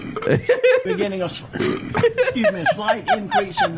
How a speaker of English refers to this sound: Her facial expression like completely changed. She like burped downwards. Like what? Did she pass away? Wait, watch her mouth. Watch her mouth when she burps.